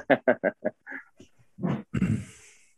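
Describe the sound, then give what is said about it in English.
A dog chewing on a bone right next to a person's foot: a quick run of short, loud gnawing bursts, then rougher, longer crunching and grinding with snuffly grunts. No one talks. “My dog is chewing this bone and I don't want it on this.”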